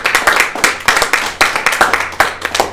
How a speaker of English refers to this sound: So a big round of applause, please.